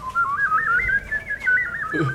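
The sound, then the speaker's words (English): A person whistles a warbling, bird-like trill that slides up and down in pitch like a trombone, with rapid looping wobbles, fairly loud, lasting about two seconds. “I have this random talent that just comes out at like family gatherings and holidays and stuff like that. It's my bird trombone.”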